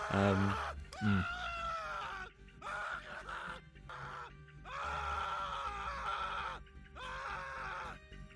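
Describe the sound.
A man screams and groans in drawn-out, anguished bursts, his wailing voice rising and breaking over several seconds with short gaps between cries, loud. A character's long death scene in the film The VelociPastor, after being clawed by the creature.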